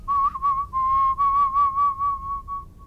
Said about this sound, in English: Wasn't that whistling so impressive?